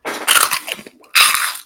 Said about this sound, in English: give you the crunch of a freeze-dried peach ring.